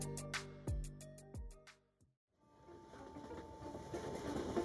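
Rhythmic clacks and a steady rumble from inside a moving train car; after a brief drop-out, a dense, continuous rolling roar of the carriage carries on, fairly loud.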